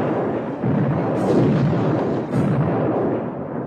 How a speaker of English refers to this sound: Mexicans charged the Alamo from all sides. The men, still drowsy with sleep, leapt to their battle stations as the Mexican troops blasted the walls with suppressing musket and cannon fire.